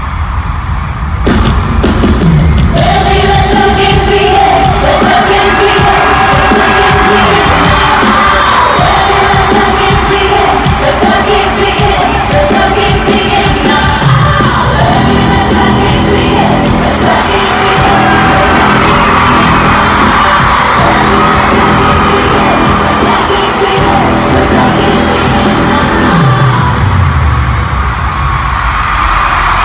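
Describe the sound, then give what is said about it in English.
A huge concert crowd roars continuously, with cheering, screaming and whooping voices blending into a loud, dense wall of noise that fades out abruptly near the end. “I have a clip I wanted to play just so you guys can get a feel for how loud the crowd was that night.”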